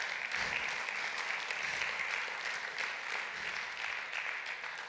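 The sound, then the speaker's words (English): A large crowd claps steadily and loudly to applaud the Lord Jesus Christ, a dense, sustained wash of applause for the full duration with no pauses. “Let's applaud the Lord Jesus Christ.”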